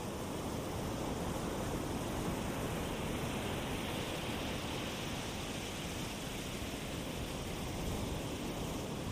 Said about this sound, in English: And the waves are gently crashing toward the shore, right at your feet.